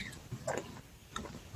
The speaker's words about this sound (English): just taking a sip of water